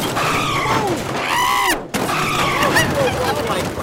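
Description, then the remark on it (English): A loud crash with shattering glass, part of a dense, chaotic burst of noise with screeching tones, a brief cutout midway, then more clattering debris. “There's glass everywhere.”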